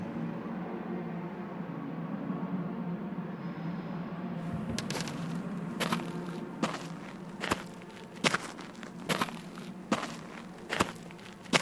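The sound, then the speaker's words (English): Footsteps on hard compacted earth in the Foley theatre of Pinewood and Shepperton Studios, London: sharp, crisp steps fall in a steady walking rhythm after a few seconds of low rumbling background, each impact short and bright. “This is hard compacted earth.”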